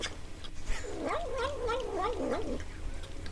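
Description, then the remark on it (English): A cat makes a wavering, murmuring vocalization while eating spoonfuls of sour cream, a rapid string of warbly num-num sounds lasting about two seconds over a low, steady background hum. “A cat says num num num num num num num when it eats spoonfuls of sour cream.”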